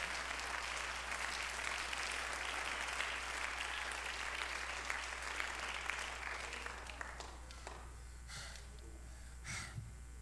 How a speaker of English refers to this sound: Give the Lord a hand clap of praise for just a minute.